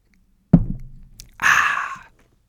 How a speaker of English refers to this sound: All right, let me get a sip of water quick.